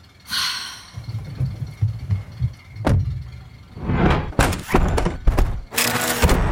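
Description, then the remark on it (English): A car door slams shut with a sharp thud, followed by several heavy clunks and rattling knocks as the lock engages, over a low rumbling background. “The door is locked. We're trapped.”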